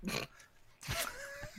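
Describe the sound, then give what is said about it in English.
A person fakes a pity snore: a short rasping nasal snort, a brief pause, then a longer, louder grunting inhale that ends with a thin whistling tone. “Thanks for the pity snore.”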